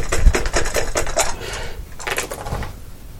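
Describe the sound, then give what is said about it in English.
A quick flurry of small hard clicks and rattles as Cthulhu Dice are rolled, tumbling and clattering across a hard surface, with a brief pause before a second, shorter burst of rattling. “And I'm going to roll some different dice.”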